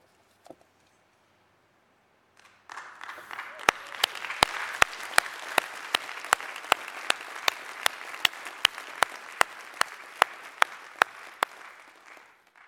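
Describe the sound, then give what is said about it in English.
Audience applause in a room, the only audio of a video clip, starts abruptly after a quiet moment and holds steady as a dense, broad wash of clapping, with sharp, regular louder claps punching through in a steady beat. “There's no audio to it except for maybe the applause in these rooms.”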